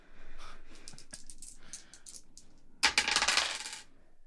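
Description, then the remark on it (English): Dice, a d10 and a d4, rattle and clatter across a hard tabletop, rolled for damage in a tabletop game: a run of light ticking taps, then a louder, busier tumbling burst that settles quickly. No one speaks. “Okay, so roll me those dice twice and then add the 4.”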